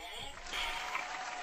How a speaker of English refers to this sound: Hold on a second. I need to give you some applause. Where the fuck is it?